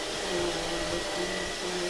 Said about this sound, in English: please, put the vacuum down.